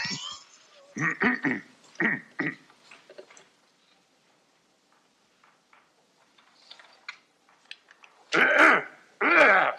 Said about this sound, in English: And so Chevy Chase coughs.